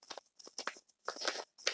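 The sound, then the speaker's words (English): Quiet, papery rustling and riffling of a deck of tarot cards (the Charamucha deck) being shuffled, coming in four short crunchy bursts separated by brief pauses, with no voices. “I'm shuffling the Tarot Oshun deck. I don't know if you can hear it or not.”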